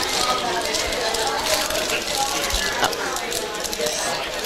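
Wrapping paper being torn open from a wrapped gift, a steady stream of crisp, crackling rips and rustles lasting several seconds, with sharper bursts of tearing scattered through it.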